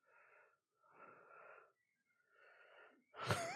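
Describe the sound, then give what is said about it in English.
Heavy, noisy breathing from a person who is concentrating, three slow breaths separated by short pauses, followed by a sharper, louder wheezing intake of air at the end. No talking. “I'm breathing so heavy because I'm concentrating.”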